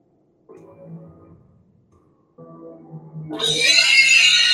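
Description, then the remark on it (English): A saw pig prop at the Mayhem Manor haunted attraction grunts in two short bursts, then breaks into a loud, shrill, sustained squeal that swells and fills the final second, harsh. “There's the saw pig.”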